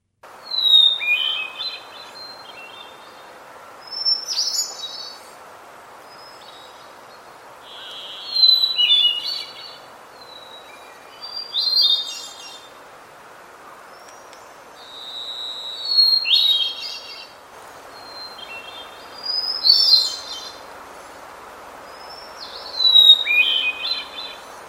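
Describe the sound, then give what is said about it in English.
A hermit thrush sings alone, repeating clear, flute-like phrases about every four seconds, each starting on a held whistle and breaking into a shimmering flourish, over a soft, steady background hiss. “That was the hermit thrush”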